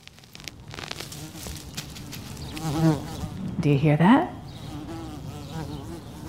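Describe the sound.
A bee buzzes outdoors around a cherry tree in a front yard on a sunny day, its drone swelling louder in two passes near the middle before fading back. A voice briefly speaks over the quiet background.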